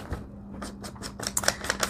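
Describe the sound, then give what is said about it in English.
Paper pages crinkling in a series of irregular, crackly rustles that grow busier and sharper toward the end, with no one speaking. “So, loving the crinkly sound of paper today.”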